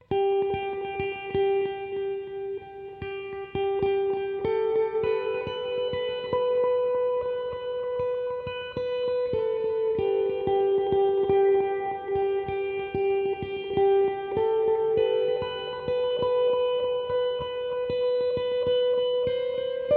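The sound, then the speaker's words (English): A sustained melodic tone shifts slowly between a few pitches, drenched in heavy reverb and echoing delay, with a steady, washed-out sound and no singing or speech. “with a lot of reverb and delay effect on it.”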